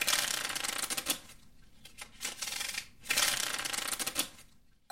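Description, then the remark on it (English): Tarot cards are shuffled in two brisk bursts of rapid papery riffling, separated by quieter slides and soft taps as single cards are drawn and laid down for a three-card past, present and future reading. “So I'm going to be doing a 3-card pull for your past, present, and future.”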